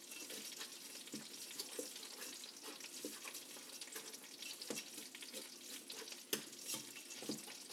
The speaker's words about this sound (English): I'm going to return to the pot roast here in a minute. I've taken that off the heat so as not to burn it, but you can still hear it kind of sizzling away, and I like that sound a lot.